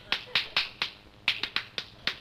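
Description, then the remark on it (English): A quick series of sharp slaps of hands on bare skin during a massage, about nine smacks in two uneven bursts, each a crisp bright hit with a short tail, no voices. “Look, don't slap, will you please? Rub.”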